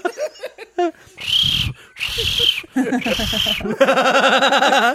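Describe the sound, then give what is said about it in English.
A voice imitates a shrill whistle with three harsh, breathy blasts in a row, broken up by short vocal yelps, then ends on a long, loud, sustained shrill tone. “That's me. I don't even need the whistle.”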